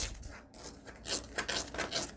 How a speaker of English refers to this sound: If you just want to get a thin strip, you can cut this, but I like to tear the metal ruler because it's got a sharp edge on it.